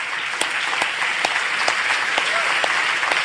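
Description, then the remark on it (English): A crowd applauds steadily to welcome guests from the house churches of mainland China, dense overlapping claps forming a bright, continuous wash with a few sharper individual claps standing out throughout. “Now, for this next section, yeah, do give them a clap.”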